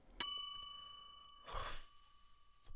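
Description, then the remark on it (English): A single bright ding from a reception desk bell, pushed by guests waiting to check in, rings out and fades slowly, followed about a second later by a soft breathy sigh. “You've literally only just pushed the bell.”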